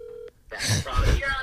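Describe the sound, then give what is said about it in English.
A steady telephone tone stops abruptly, leaving a short dead gap before harsh, garbled line noise and indistinct voices rush back in as a phone call cuts out. “Sorry. It cut out.”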